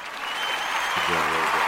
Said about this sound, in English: Let's give the fans a round of applause.